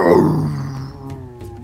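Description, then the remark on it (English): A hellhound at the edge of a rooftop lets out a single loud, snarling howl, rough and harmonic, starting strong and gradually trailing off as the pitch sags over under two seconds. No voices. “As one of these hellhounds makes its way to the edge and looks down on you and then howls again.”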